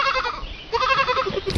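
A goat bleats twice in quick succession, each cry a wavering, nasal bleat, with no one speaking, followed by a brief sharp noise at the very end.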